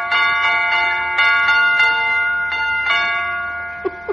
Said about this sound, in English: What did that doorbell say? It's broken, Mr. Wimple. Yeah, I'm trying to fix it